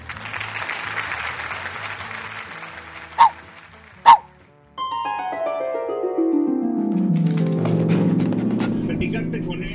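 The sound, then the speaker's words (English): Two short, sharp barks from Blanca, a little shaggy white dog, a second apart, over a wash of noisy background that gives way to sliding, descending tones. “And that's Blanca, a little shaggy white dog and the hero of this story.”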